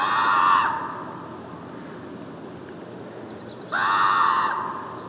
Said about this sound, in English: stops to tape the calls of the raven, still echoing out over a salt marsh.